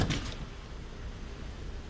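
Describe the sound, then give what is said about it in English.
A small mirrored medicine cabinet door in a bathroom shuts with one quick knock at the very start, followed by a low, steady room hum with nothing else happening. “Now he's standing in front of his bathroom mirror, and he puts his toothpaste inside the medicine cabinet and then closes the door, which is, of course, a mirror.”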